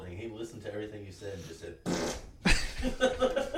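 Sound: fart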